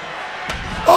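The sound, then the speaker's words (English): A steel chair slams once against a wrestler's back, a single sharp, loud crack midway through, over a steady crowd roar that swells into louder shouting right after. “Oh, what a chair shot.”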